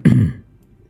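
A single short, gruff throat-clearing sound, low and rough, lasting under half a second before fading into quiet.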